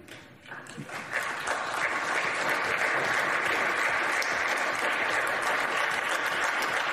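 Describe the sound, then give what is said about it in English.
Loud, sustained applause from a large crowd standing up to applaud Mitt Romney builds within the first second and holds steady as a dense, continuous wash of clapping, with faint cheers mixed in. “And they even stand up to applaud Mitt Romney.”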